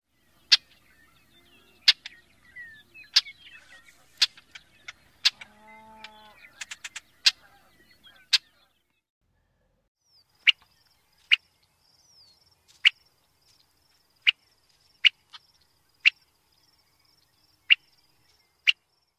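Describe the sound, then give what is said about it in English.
Sharp, clipped chuck notes from a Brewer's blackbird repeat about a dozen times, irregular at first and then steadily spaced around a second apart, with a faint animal call and thin insect-like buzz behind. “Brewer's blackbird's calls consist of a blackbird-like chuck call.”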